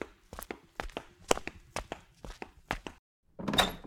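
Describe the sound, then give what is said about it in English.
Steady knocking on a door by a mail carrier bringing a special delivery letter, about eight evenly spaced thuds, followed after a brief pause by a short rustling, creaking burst like a door being opened. “Saved by the knock.”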